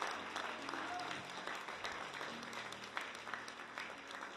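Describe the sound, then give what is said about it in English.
An audience claps their hands in steady, dense applause that fills the whole clip, many hands blending into a continuous, even patter with a few voices faintly mixed in. “Yeah, we'll give them a hand clap.”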